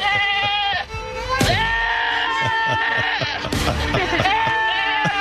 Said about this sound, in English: Stupid goats.